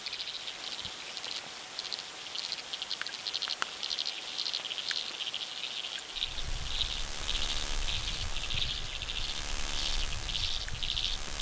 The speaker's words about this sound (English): I can hear some ticking noises, maybe a few little bits of stridulation, those rubbing sounds from the water boatman. The rattling you can hear now is the sound of a water boatman.